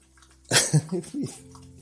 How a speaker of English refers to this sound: I'm drinking some water.